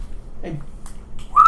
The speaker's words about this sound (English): I whistled down. Like, I just whistled.